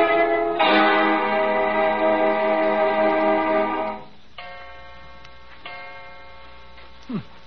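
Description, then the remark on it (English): A clock strikes 2 o'clock with a loud, ringing chime that hums for several seconds, followed by softer, fading strokes and a brief sliding sound near the end. “Only 2 o'clock.”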